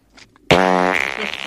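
A loud wet fart bursts in after a brief faint rustle, sustaining a buzzing, sputtering tone for about a second before trailing off raggedly.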